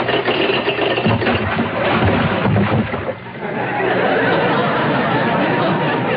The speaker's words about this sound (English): Next, a ship dropping anchor.